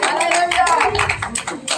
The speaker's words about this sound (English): Somebody give Jesus a good hand clap of praise tonight.